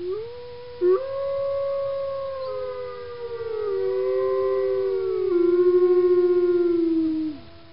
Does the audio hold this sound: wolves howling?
yes